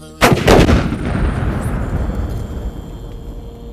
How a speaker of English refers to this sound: Let's break out the little rocket and take out the truck.